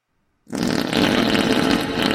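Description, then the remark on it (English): A loud, sustained fart erupts abruptly after a brief silence and rumbles on continuously with a raspy, sputtering texture until the end, with no talking. “Oh, God, that was the biggest fart ever.”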